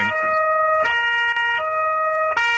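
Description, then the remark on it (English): A loud emergency vehicle siren sound effect wails steadily with strong tonal harmonics, its pitch shifting in a repeating two-tone pattern with no talking over it. “I hear them, yes, the sirens. You have the sound effect? Because I can get you the siren.”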